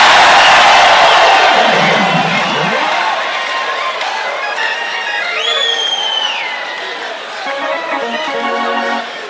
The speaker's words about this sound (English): Give the Lord a shout and a clap of it.